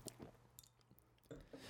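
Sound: sipping beer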